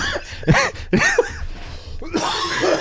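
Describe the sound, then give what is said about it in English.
A loud, raspy fit of coughing, three or four harsh bursts, the last one drawn out and throaty. “Loud coughing.”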